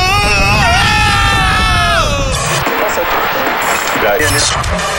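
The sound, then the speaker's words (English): Mount Vesuvius erupts as a crowd screams: a loud, wavering shriek slides downward in pitch, then gives way to a continuous rumbling roar full of overlapping panicked shouts and crashing noise. “What's that noise? It's... I think it's Mount Vesuvius. The volcano's erupting!”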